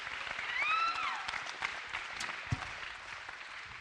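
A crowd applauds with dense, steady clapping that swells briefly then holds, with a few high whistles or cheers rising over it near the start.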